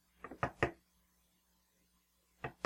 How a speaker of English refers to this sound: What the heck is that coming from? Latch. The latch. What's it doing? There's like a knocking. Hello? It sounds just like that.